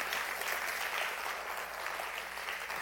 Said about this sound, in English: God wants to give us authority. Come on, if you believe it, give him a hand clap real quick.